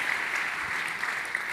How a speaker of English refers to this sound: You're clapping. You're clapping. You're clapping. You're clapping.